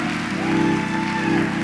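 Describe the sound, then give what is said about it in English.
A church audience claps for the Lord together in a steady, dense wash of applause, loud and sustained for the whole moment, with a faint sustained organ-like tone underneath and no one speaking. “Come on, give the Lord a hand clap, church.”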